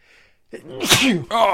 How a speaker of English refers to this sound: I'm going to sneeze.